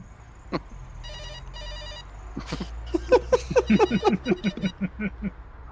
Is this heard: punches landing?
no